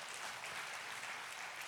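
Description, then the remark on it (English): An audience claps steadily, a dense, even wash of many hands with no breaks and no voices over it, holding at a consistent level throughout. “Somebody clap for that. That's a good one to clap for.”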